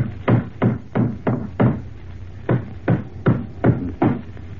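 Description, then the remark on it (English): Hammering nails into a floorboard: two bursts of about five sharp, solid blows each at a steady pace, separated by a short pause. No voices. “All right, I'll put the floorboard back in place now. Hammer these nails in, and that'll be sound again.”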